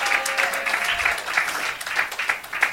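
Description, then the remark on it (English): A church crowd in Garland, Texas claps steadily in praise to God, a dense, continuous patter of many hands at moderate loudness, with a faint sustained tone briefly audible underneath before the applause carries on alone. “Give God a hand of praise.”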